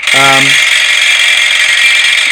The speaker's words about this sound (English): I don't know if it's doing me any good, though. It's a rather vigorous vibrating action, to be honest.